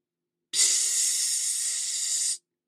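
A steady, bright fizzing hiss starts abruptly, holds at an even level for nearly two seconds, then cuts off cleanly, like a burst of carbonation or spray with no voices.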